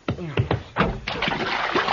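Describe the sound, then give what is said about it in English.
Water splashes in a bathtub as a man is dunked in and water is poured over him: a few quick sloshes, then a steady rush of pouring and churning water, with a voice faintly mixed underneath. “Oh, don't pour that water on me now.”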